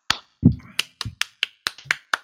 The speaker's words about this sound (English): Yep, all the clapping, all the applause.